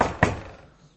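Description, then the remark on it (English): A couple of hollow knocks on a door, a quick thud followed a moment later by a sharper rap, ringing briefly with no talking. “Like, maybe you knock on the door.”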